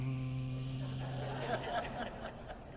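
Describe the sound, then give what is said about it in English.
A voice imitates radio static, starting with a low buzzing hum and breaking into crackly, hissing bursts, steady for about three seconds. “Static, you know.”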